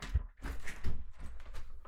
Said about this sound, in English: I just opened my garage door, and now I'm heading into my garage.